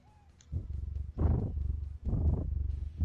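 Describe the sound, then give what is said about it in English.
A female cat purrs loudly, a deep rumbling that swells in rhythmic waves with brief pauses between breaths, with no voices. “Can you hear that? Yeah. She's super purring.”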